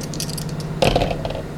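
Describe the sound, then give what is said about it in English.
Dice rattle briefly, then land on a hard surface with a sharp clack and a short tumbling clatter during a tabletop game, coming up snake eyes. A faint steady low hum sits underneath, and nobody speaks. “Oh, and he rolled snake eyes, missing”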